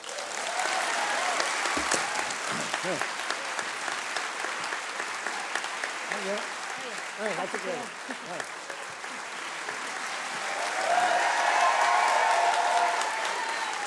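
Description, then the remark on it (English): An audience at a storytelling event breaks into sustained applause as a storyteller leaves the stage, a dense steady patter of clapping mixed with whoops and cheers, swelling louder toward the end. “who got an extra loud cheer as he left the stage that night”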